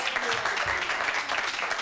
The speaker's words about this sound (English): Ladies and gentlemen, we would like to give you a round of applause.